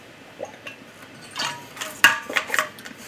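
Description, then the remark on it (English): Someone drinks water from a glass, with a few soft swallows and gulps, light clinks of glass, and liquid sloshing in short bursts, with no talking. “But, hold on, taking a drink of water.”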